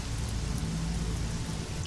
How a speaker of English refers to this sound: But you immediately do have to push yourself against the wind and the rain pelting your faces as you saddle up and push onward.